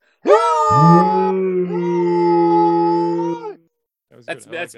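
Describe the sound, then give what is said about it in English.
A person imitates a wolf or werewolf howl with one long, loud, drawn-out voiced cry lasting about three seconds. A brief burst of speech follows. “That's me doing a werewolf, a wolf or whatever.”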